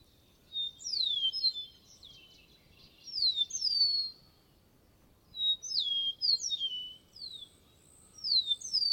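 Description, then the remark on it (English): A meadowlark sings: bright, clear whistled phrases of slurred, falling notes, repeated in two bursts with a short pause between, over a faint low background hum. “The long, rich note of the meadowlark.”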